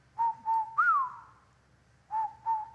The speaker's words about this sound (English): Listen to a whippoorwill.